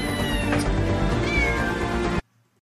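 A cat lets out one loud, drawn-out meow, lasting about two seconds before cutting off abruptly into silence, in an advertisement for the game Battle Cats from Hitoshi Vision.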